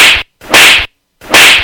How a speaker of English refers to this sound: Yeah, no, that's my second slap right there.